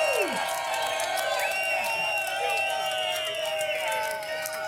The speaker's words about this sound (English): How about a big, loud round of applause for Gary Rourke?